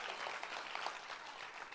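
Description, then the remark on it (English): An audience claps together, a dense, steady patter of many hands filling the whole moment at an even, moderate level, with no voices standing out. “Come on, clap together if you believe it and you got some faith for it today.”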